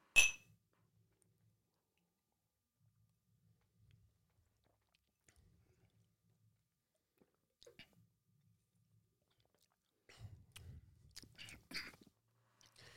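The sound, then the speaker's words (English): A single bright clink of glasses of blended Scotch whisky rings out at the start in a toast, followed by a long near-silence, then soft sipping and mouth sounds near the end as the whisky is tasted. “So cheers. Cheers.”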